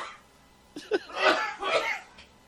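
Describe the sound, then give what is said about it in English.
A person coughs in a few rough, breathy bursts over about two seconds, the later ones longer and fuller, at moderate loudness with no talking. “Yeah, keep coughing, you dumb...”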